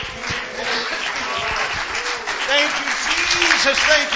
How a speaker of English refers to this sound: Praise God. Let's clap our hands.